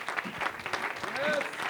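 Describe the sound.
The Bendale audience applauds warmly to welcome a speaker, a dense wash of many hands clapping steadily, with some scattered voices and cheers mixed into the clapping.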